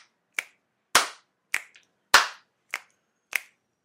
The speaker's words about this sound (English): I mean, if we want to do the math add up, I believe it was 4 slaps, 4 snaps, and a little bit of a bitty bitty bump.